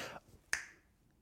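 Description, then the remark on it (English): A single sharp finger snap, bright and crisp with a quick decay, preceded by a brief breathy rustle and followed by quiet. “Finger snap.”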